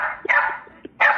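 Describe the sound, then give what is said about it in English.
A dog in a played video clip makes drawn-out, vocal-like howling yowls, two strong bursts with a brief pause between, loud, sounding as if it says 'cornflakes'. “There is a dog saying cornflakes.”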